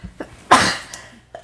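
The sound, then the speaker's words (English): A single sharp, fairly loud sneeze bursts out, a sudden explosive blast of breath that fades over a fraction of a second, with faint breathy sounds just before and after. “Bless you.”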